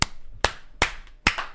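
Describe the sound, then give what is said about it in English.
Four sharp hand claps ring out at a steady, unhurried pace, each a crisp smack that fades quickly, with no talking in between. “I'm going to give it a clap.”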